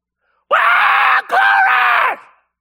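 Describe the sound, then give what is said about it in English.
A voice imitates the loud, strained scream of a small child in a church while people sing, in two long bursts with a brief catch of breath between them, harsh, then trails off quickly into silence. “And the whole time they're singing, this little Indian is screaming.”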